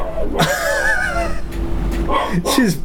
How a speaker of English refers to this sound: She's barking with a ball in her mouth, and it had this like ball gag sound.